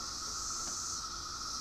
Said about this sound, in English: For my final poem, I have moved to the front porch where you can hear in the background the chorus of a million 17-year cicadas issuing their mating calls to each other